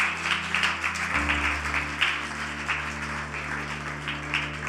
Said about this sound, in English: Amen, amen. Can we clap our hands for the Lord?